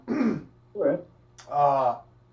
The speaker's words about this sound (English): Excuse me, I apologize for the coughs.